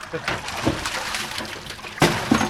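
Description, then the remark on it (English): Water sloshes and splashes in several uneven bursts as a pole net scoops fish into a large metal tub filled with lake water, with a sharper, louder splash near the end and low voices underneath. “uses a pole net to scoop out all the fish and put them in a large metal tub filled with lake water.”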